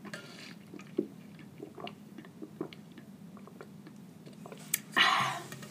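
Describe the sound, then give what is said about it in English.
Swallowing and soft mouth sounds of someone drinking water from a water bottle during a water break, with small wet clicks and gulps, then a louder rustling splash of plastic near the end. “Speaking of, let's do a water break right now.”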